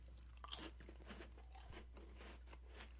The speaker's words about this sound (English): First of all, I'm going to be snacking on these little Toll House cookies and Nutella. So you're going to have to just kind of bear with me as I chew on these things because they are delicious.